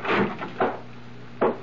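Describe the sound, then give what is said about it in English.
A bedroom door opens with a rough wooden scrape and two short, dull knocks, then a final sharper clunk, all over a steady low hum. “I waited for the bedroom door to open. And it did.”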